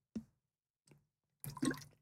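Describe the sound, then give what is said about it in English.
Water is poured into a glass to drink: a brief splash, a small second trickle, then a longer burst of pouring liquid with gurgling, separated by short silences and with no talking. “I'm getting another drink of water.”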